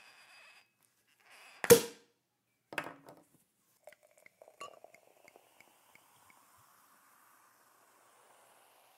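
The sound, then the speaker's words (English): A sharp pop as a bottle of sparkling wine is opened, followed by a glassy clink, a short pour and a scatter of faint, light clinks and fizzing. No one speaks. “So let's crack open some bubbles and discuss what to watch and listen to this bank holiday.”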